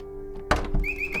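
A door being unlocked: one sharp metallic thunk followed by a few rattling clicks of the bolt, over a steady low hum, with faint high chirps trailing after.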